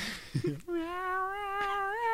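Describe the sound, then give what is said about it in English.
A person croons a soft, drawn-out meow to sing a cat to sleep, holding one steady, slightly wavering note for over a second, clear, imitating a cat as if singing it a lullaby. “Well, he sings it in cat.”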